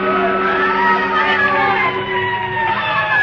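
Loud, continuous siren wails rise and fall over a low engine rumble, several tones overlapping as fire engines race through city streets without pause.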